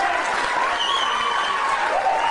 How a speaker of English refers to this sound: And the crowd cheers, it's like fucking awesome.